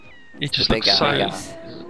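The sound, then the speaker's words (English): A small, high-pitched cartoon kitten meows in one drawn-out, wavering cry lasting about a second, fairly loud, with a faint tonal whistle before and after. “And it's the little meows as well.”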